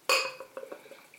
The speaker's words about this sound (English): Opening with my De Helden Bruges bottle opener I picked up at the brewery in 2013 when I was over in the Netherlands. It's got a yellow top, this one, so off it comes.